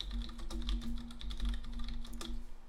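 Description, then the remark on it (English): Rapid, uneven computer keyboard typing clacks during a Google search, a steady run of sharp key taps over a faint low electrical hum, with no one speaking. “Yeah, pretend like you can't hear my keyboard clacking.”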